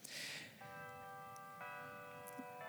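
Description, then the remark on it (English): A church bell tolls twice, each ringing strike lingering with a sustained metallic hum, fairly faint, after a brief burst of hissy noise at the start. “And as the bell ominously tolls”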